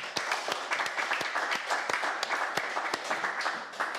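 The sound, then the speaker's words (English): A crowd applauds steadily as a clap offering to God, many hands clapping in a dense, continuous patter with a few sharper, louder claps standing out, sustained at an even level throughout. “Beloved, let's give God a clap offering.”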